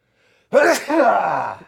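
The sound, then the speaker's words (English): A single loud sneeze with a voiced, strained sound and a sharp burst, followed by a drawn-out vocal tail that fades after about a second. “You always sneeze during these.”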